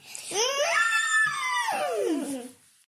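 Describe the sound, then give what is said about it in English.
Two children, aged 7 and 5, imitate an elephant's trumpet with one long, loud, high-pitched wail that sweeps upward, holds, then slides down and fades after about two and a half seconds. “This is our elephant impression.”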